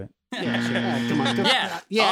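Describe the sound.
A loud electronic buzzer blares in a steady, flat tone for about a second and a half, with voices chattering over it, then cuts off briefly before sounding again.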